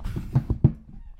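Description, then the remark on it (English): A person imitates a rooster's crow, a quick burst of four or five clipped, throaty syllables rising and falling in just over a second. “Cock-a-doodle-a-doo.”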